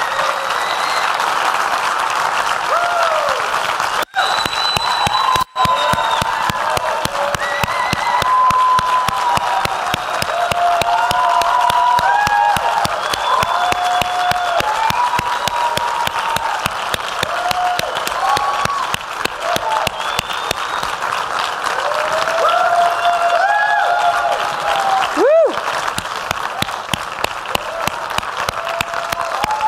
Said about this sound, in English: This is a man who has spent his entire life innovating for a better world, and I think we need to give him one more round of applause for that. Happy 100th birthday!